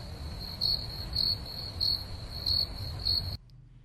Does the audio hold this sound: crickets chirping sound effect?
yes